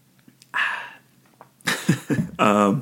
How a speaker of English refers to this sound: So now, after a drink of water